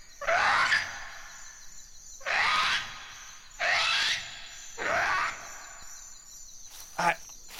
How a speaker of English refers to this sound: I don't think I've ever heard birds like that. What were those?